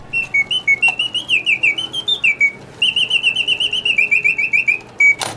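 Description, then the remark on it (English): A wind-up mechanical bird music box chirps in rapid, rhythmic whistled trills, fairly loud, in two long bursts separated by a brief pause, with no voices. “Another thing he just loved was the wind-up music boxes that were like a mechanical bird.”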